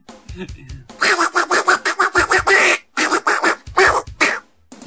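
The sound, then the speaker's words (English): A person loudly imitates a duck, letting out a rapid string of nasal quacks in bursts, with brief pauses between runs and a few softer vocal sounds at the start. “Imagine Dr. Phil gets a call from Quack Watch.”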